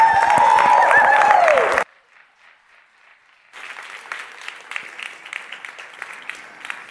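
A loud burst of crowd noise cuts off abruptly, then after a short lull a large audience breaks into sustained, dense applause, many hands clapping steadily with sharp crackling peaks.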